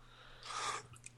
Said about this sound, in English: Whoa, let's end off with a cough.